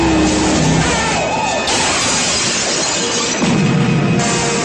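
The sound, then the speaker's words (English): A loud, busy car chase from a 1970s action movie: a sheriff's deputy chases a car up a mountain, with roaring engines and crashing, clattering noise while a wailing police siren rises and falls through the din, with no talking. “Watching a dim-witted sheriff's deputy chase the car up a mountain and then be thrown off in a spectacular explosion only a bad 1970s action movie can deliver is enough for me.”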